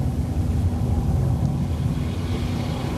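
A rocket's BE-3 engine roars in a steady, loud, continuous low rumble as the rocket climbs toward just over the Kármán line at 100 kilometers, dense and unbroken for the whole stretch with no voices over it.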